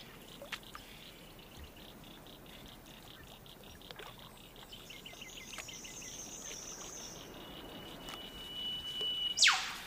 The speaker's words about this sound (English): It's a spacious recording. You first hear the scale when a bird flies through and its call is echoed by large structures in the environment. A ring of hills, I think, and a lake, definitely.